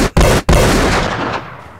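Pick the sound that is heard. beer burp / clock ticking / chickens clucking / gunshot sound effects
gunshot sound effects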